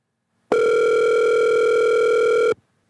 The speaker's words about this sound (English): Oh, I get all the ringing. I might cut some of the ringing out.